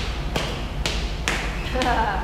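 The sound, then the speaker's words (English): During a stretching exercise, a relaxed foot stomps down on the floor four times in a steady rhythm, each a short, dull thud roughly half a second apart over a low background hum. “And now relax your foot and stomp it down.”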